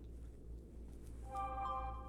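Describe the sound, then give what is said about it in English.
A mobile phone ringtone starts partway through, a bright tonal electronic melody with ringing harmonics over a steady low hum. It stays fairly soft, with no one speaking. “My phone.”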